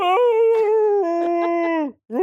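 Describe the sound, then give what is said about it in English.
A person imitates a Malamute dog's howl: one long, wavering, sustained note held loud for nearly two seconds, then a brief break before another howl begins. “Like howling at each other because they wanted to be pet so bad.”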